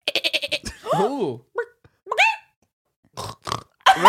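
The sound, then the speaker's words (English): A person imitates a goat with a quick, stuttering bleat, then keeps making wavering animal-like vocal noises in short bursts separated by brief pauses, making three animal sounds on request. “Now, the first one was a goat, and I can't do it again.”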